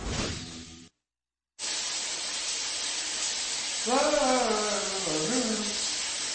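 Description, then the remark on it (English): Steady, loud hissing spray of shower water runs on, broken by a brief silent gap near the start, with a short vocal exclamation rising over the rushing water toward the end. “The water just stopped in here.”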